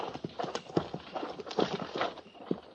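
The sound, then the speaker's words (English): Several horses' hooves clip-clop steadily at a walk as mounted riders move forward by twos, a dense overlapping patter of hoofbeats, with no voices. “Prepare to mount. Mount. Forward. By twos. At the walk.”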